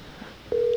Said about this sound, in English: I'm calling her cell phone.